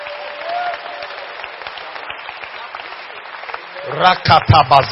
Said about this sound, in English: But clap your hands for Jehosheba.